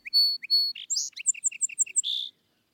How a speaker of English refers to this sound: The song sparrow, which every child knows, comes first. At least, his voice is first heard. And can there be anything more fresh and pleasing than this first simple strain heard from the garden fence or a near hedge on some bright, still March